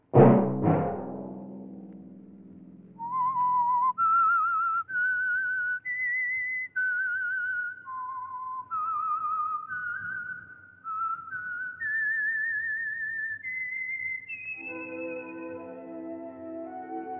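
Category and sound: signal or alarm, whistled signature theme tune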